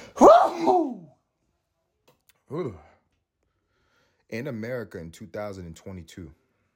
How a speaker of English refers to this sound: I got to sneeze.